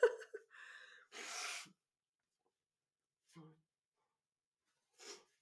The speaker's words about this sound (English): Oh my goodness, there is certainly, absolutely, positively no way to be ladylike while blowing your nose on camera.